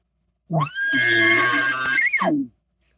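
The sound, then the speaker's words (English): A single imitated bull elk bugle calling cows, loud: a low grunt sweeping up into a sustained high, raspy whistle for about two seconds, then dropping back down, with no talking. “Like when his emotion changed and he started talking to his cows with that bull calling cow's bugle, that's what I will do now.”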